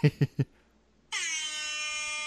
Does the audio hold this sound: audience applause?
no